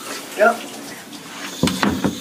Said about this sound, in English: Oh, I'm in the shower.